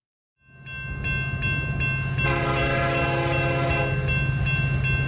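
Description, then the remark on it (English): A train rumbles steadily with a low, continuous engine drone, and a loud sustained horn blast sounds over it midway, with faint clacking along the tracks; no one speaks. “All aboard. All aboard the Taysom train.”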